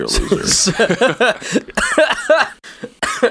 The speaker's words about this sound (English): That cough was real, wasn't it? Well, it was like, it was real because, like, I was... That cough sounded real.